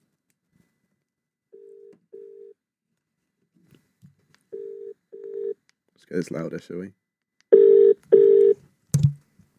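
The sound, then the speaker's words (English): Pairs of steady electronic ringback tones pulse at an outgoing phone call, first quiet, then much louder after a brief spoken remark, ending with a sharp click. “So let's call her up.”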